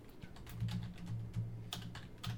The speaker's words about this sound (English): He's typing again. I think he's trying to get an actual verbatim definition.